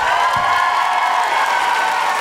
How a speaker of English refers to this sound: Please keep tweeting. We really love you. Feel free to come up and say hi at the end. And can I have a huge, huge, huge round of applause for the wonderful